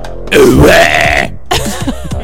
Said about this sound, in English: That's what it sounds like when I burp.